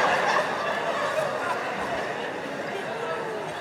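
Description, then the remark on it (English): A turkey gobbles in a rapid, warbling burst that runs steadily for several seconds, fairly loud, with a dense chattering texture and no pause. “As if I was gonna be walking down the street like, damn, there go that bitch bird.”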